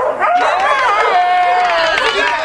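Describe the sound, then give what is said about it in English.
A dog named Rex gives voice in drawn-out, wavering high-pitched yelps and howl-like barks that run together without pause, loud and continuous over a low background murmur. “Put your paws together. Put your paws together. Come on, Rex, speak up.”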